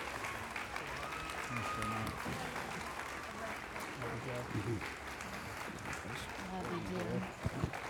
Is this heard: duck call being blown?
no